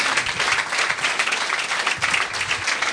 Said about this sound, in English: We'll give a big round of applause to Simon Munnery, who will not be returning. Thank you very much.